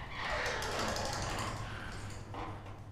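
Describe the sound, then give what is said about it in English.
A steady mechanical grinding with a low motor hum and faint rattling drones on throughout as a dented garage door at the corner of a lot slowly lifts open after a keypad is used, with no talking. “He flips open a plastic keypad, and the door slowly lifts.”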